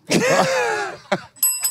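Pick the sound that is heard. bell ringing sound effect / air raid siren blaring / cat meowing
bell ringing sound effect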